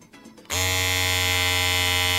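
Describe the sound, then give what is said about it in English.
An electric razor switches on abruptly after a brief quiet moment and hums with a loud, steady buzz that holds unchanged to the end. “I mean, he did razor.”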